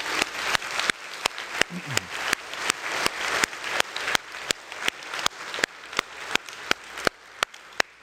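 A large crowd claps steadily for several seconds to applaud Jesus, a dense wash of applause with a few sharp, louder claps standing out, no voices audible.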